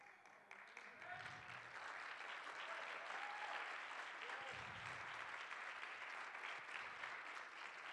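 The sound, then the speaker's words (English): An audience claps their hands in a dense, steady roar of applause lasting the whole stretch, with faint voices rising briefly beneath the clapping. “You're going to stop clapping your hands because you hear the truth you're going to hear.”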